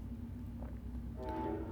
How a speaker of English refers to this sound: You can probably hear the train.